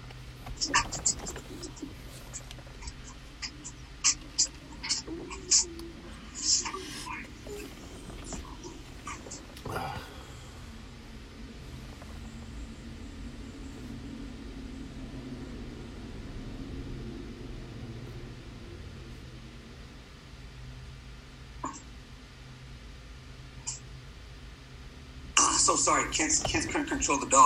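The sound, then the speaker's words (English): Quick, irregular clicking of dog claws on a hard floor, clustered in short bursts early on, then fading, with low background rumble and faint murmuring voices. “I can hear him tap dancing there.”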